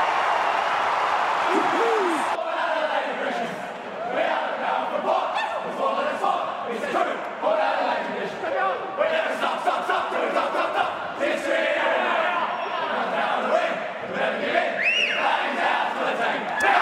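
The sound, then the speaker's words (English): A huge football stadium crowd, standing as Port Adelaide beat Melbourne in a thriller, roars and cheers continuously, a dense wall of voices with scattered shouts and whistles rising above the din throughout. “Crowd are standing.”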